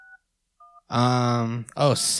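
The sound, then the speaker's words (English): Two short telephone keypad tones beep in turn, separated by a brief pause, followed by a clear automated voice speaking over the line, asking the caller to enter the area code and number followed by the pound sign. “Please enter the area code and number you are calling, followed by the pound sign.”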